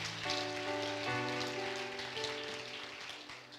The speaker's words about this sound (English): Somebody say amen. I want you to clap your hands and thank God for his word.